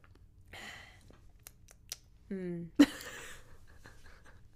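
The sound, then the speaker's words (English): An airy slurp of someone sipping hot chocolate tea from a cup, followed by a few small clicks, a brief hummed murmur, and a sharp clack as the cup is set down. “I would give it, hold on, one more sip.”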